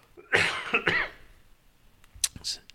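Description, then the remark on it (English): A fairly loud burst of several rough coughs in quick succession, followed by a short pause and a couple of fainter, sharper throat-clearing sounds. “Got a cough.”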